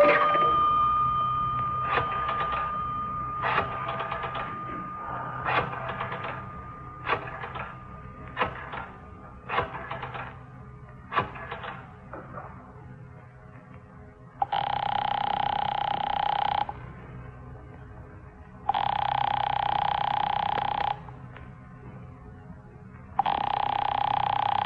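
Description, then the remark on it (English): A telephone rings in three long, steady bursts with pauses between, preceded by a run of quick, rattling mechanical pulses; the ringing is heard upstairs. It is fairly loud, and no one speaks. “won't answer. It's ringing. I can hear it upstairs.”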